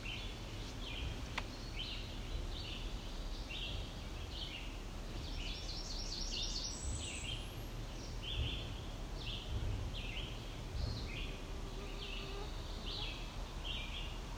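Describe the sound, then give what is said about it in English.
Red-eyed vireos sing in the background, their short, clipped phrases repeating steadily with brief pauses, fairly faint above a constant low outdoor rumble. No one speaks. “Do you hear the red eye vireos in the background?”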